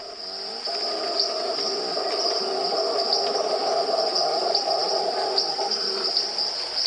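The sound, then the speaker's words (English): A dense rainforest night chorus in Corcovado National Park, Costa Rica, recorded in the early 1990s: a steady, shrill insect drone and scattered little tree frog peeps over a low, continuous roaring from a howler monkey, with no talking. “Well, in the background, you're hearing a howler monkey. And then you're hearing little tree frogs, little peepers, and some insects.”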